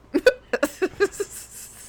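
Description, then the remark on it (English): A quick string of about seven sharp, voiced hiccup sounds in a bouncy rhythm, fairly loud, apparently a voice imitating hiccups, fading into a breathy exhale at the end. “Sometimes you hiccup like you're a rapper in a song.”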